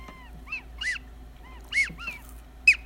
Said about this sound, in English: And then I bought him a goose call too. Oh my god, that looks like a bong.